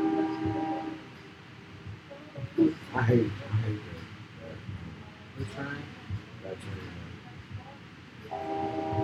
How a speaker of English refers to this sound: I hate that. The train? That train. Blasting. 3 o'clock in the morning. Train blasting.